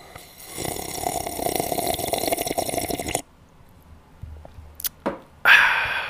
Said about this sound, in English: Let's get into a little bit of coffee talk. Let's sip on this quick little coffee so I can get into what I want to say right now.